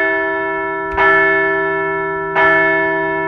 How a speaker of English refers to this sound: Let's ring the bell for three dubs in a row.